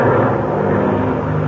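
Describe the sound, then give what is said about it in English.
A loud airplane engine roars as the plane pulls up and then dives toward the ground in front of a herd, a dense, steady droning rumble that fills the whole moment with no voices. “All right, now I'm pulling up, and then down we go, right in front of them.”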